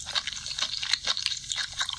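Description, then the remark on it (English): Wet, smacking chewing and slurping of food during a mukbang, a woman eating food with creamy sauce using two sticks: a rapid irregular series of moist clicks and sucking sounds at moderate loudness, with no voices. “How are you going to chew like that and slurp at the same time?”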